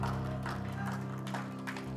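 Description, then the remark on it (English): An audience claps and shouts praise to the Lord over a steady, sustained musical tone, with bursts of mixed voices and scattered applause rising and falling throughout. “Give the Lord a hand clap and a shout of praise.”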